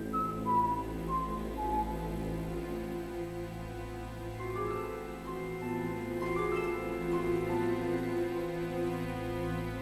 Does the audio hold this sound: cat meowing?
no